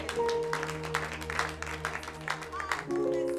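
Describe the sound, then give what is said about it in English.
An audience claps together for Jesus, a busy wash of overlapping hand claps that keeps going for a few seconds over a steady sustained organ or keyboard chord. “Clap for Jesus.”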